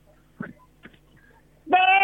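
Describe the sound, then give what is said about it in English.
A man imitates the bleat a goat makes when shot with a bow, a loud, nasal, strained cry that bursts in near the end and is cut off, preceded by a few faint breathy noises and a short quiet pause. “And he's about to show us what the noise a goat makes when you put a bow into it.”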